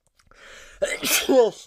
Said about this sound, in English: Excuse me, I'm so sorry. Just sneezed then.